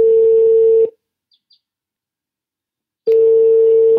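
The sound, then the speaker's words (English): A Skype call's ringing tone: a steady electronic hum sounds for about a second, falls silent for two seconds with a couple of faint blips, then rings again. No one speaks. “So I reached him by Skype.”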